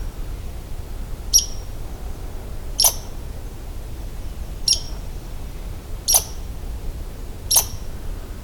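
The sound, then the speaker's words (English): An angry red squirrel gives five short, sharp, high-pitched squeaks, spaced about a second and a half apart, jumping a bit with each one, each quick and piercing over a faint low rumble of background noise. “Every time they squeak, they jump a bit.”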